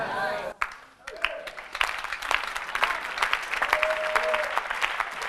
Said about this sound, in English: Oh, give the Lord a better clap of hand. There's nothing wrong to shout, to release a little tension, because I'm preaching.